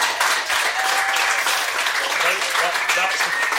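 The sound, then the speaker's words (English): An audience gives a steady round of applause as guest Kieran Bracken is introduced, dense overlapping clapping that stays loud and even for the whole few seconds, with faint voices mixed into the noise. “I get more of a round of applause for winning Dancing on Ice.”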